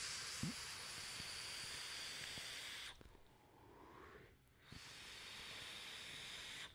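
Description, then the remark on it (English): A steady, breathy hiss of vape vapor being exhaled runs for about three seconds, drops to a brief quiet lull, then surges back just as loud and continuous. No one speaks. “I want to try to get it as vapey as possible in here.”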